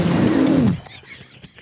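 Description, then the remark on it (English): A person who wants to scream but has to be quiet lets out a single strained, stifled scream that imitates an elephant's trumpet: loud and raspy for under a second before cutting off into near quiet. “I want to scream, but I have to be quiet. Are you an elephant?”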